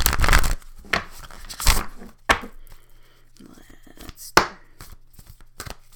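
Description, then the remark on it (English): Shuffling of a deck of Spellcasting Oracle cards: a few quick papery bursts and soft slaps at irregular intervals, with brief quiet gaps between them. “Let's shuffle one more time.”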